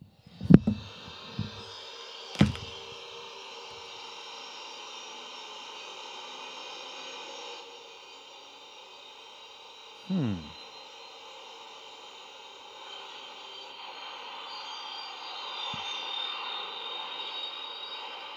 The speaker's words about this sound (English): Okay, so my guess on that one is X-wing engine, and then like going into takeoff. Let's take a look. 71. Yep, it says X-wing warming up.